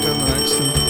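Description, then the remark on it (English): A bell rings continuously, a steady, bright high-pitched tone holding for the whole short moment over a low background rumble. “oh, there's the bell. There's the bell, folks.”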